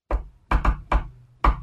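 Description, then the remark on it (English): Five firm knocks on a door in the shave-and-a-haircut secret knock rhythm: one knock, a quick pair, another, then a pause before a final knock. Fairly loud, with no voices. “Can you shave and a haircut, two bits.”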